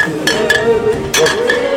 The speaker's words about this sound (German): Oh, da müssen wir gleich anstoßen. Bei so einem Lied hier.